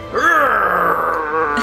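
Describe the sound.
A person voices a growl, a loud, throaty, sustained rumble lasting about a second and a half, its pitch rising slightly at the start before holding steady and trailing off.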